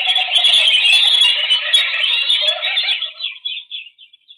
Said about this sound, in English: The birds. What? We are being followed.